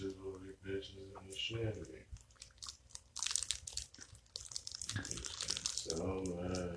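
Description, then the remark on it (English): Loud chewing of a Hostess coffee cake, with crunchy, moist bites and smacking mouth sounds in a steady run, framed by a voice speaking at the start and end. “As I sip my Maxwell House International Vanilla Caramel Latte with my Hostess coffee cake and play a slot machine on my phone and do a podcast at the same damn time.”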